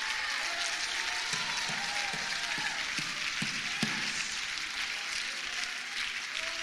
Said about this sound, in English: See, y'all got uncomfortable right there. Little patty cake clap, you know, because we're talking about being spoiled because we know we are.